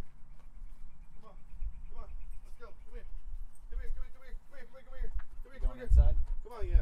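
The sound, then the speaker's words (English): A dog whimpers and barks in a series of short, high whines and yips that grow more frequent and insistent toward the end, over low rumbling background noise. “Dog, come here. Come on. Come on. Let's go.”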